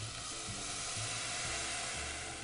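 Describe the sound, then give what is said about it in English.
Corn cooked with onion and garlic and covered with plain water simmers in a pan, giving off a steady, even sizzle and steamy hiss with faint low bubbling underneath. The sound holds at a constant level throughout, with no voices. “Now that our corn is starting to take on some of that delicious flavor from the onion and the garlic, I'm just going to take just a little bit of plain water and I'm just going to cover this corn with it.”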